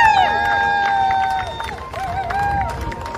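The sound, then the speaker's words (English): A crowd in Aurora applauds and cheers steadily for a World War II veteran, with sharp whistles ringing above the dense clapping and a busy murmur of voices underneath. “Another round of applause for World War II veteran,”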